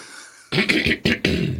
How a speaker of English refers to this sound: Hold on as I close my mic and clear my throat.